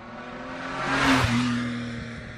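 A car engine revs and roars, swelling to a loud peak midway before the pitch drops and the sound fades off, with no voices.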